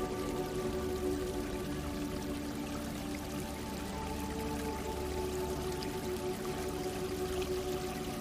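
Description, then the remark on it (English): Water of a small stream in a forest flows steadily over rocks, a continuous rushing and burbling wash with a bright, even texture and no pauses, holding a constant moderate level throughout. “Water flowing over rocks and making such sweet sounds.”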